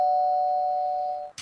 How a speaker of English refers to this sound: Here's the bell. That's right. There's a doorbell, which means Pizza from the Dead is here, so we've got to wrap it up.